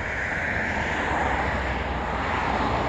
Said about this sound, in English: And of course the cars are going by, but that's just a real quick glance at Main Street in Springboro. It's Ohio, by the way.